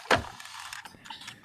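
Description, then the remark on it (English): A sharp knock as a rolled die bounces off a computer monitor, followed by a brief scatter of lighter clicks and rattles as it settles into a dice tray. No voices. “It bounced off my monitor and then back into my dice tray.”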